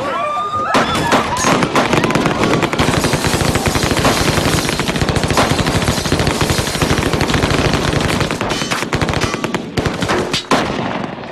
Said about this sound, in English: That is, with the deliberate exception of the sequence where Noelle finds herself on a bus that is flagged down and held up by masked gunmen. Suddenly they open fire, killing everyone inside.